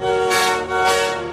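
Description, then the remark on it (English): The horn of a small, boxy, wooden battery electric engine with four small wheels sounds two loud, sustained blasts in quick succession, a bright, steady multi-tone honk with a brief dip between them and no talking. “He doesn't have a funnel, or a dome, or a whistle, but he does have a horn that sounds like this.”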